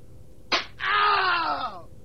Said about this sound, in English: That was a slap.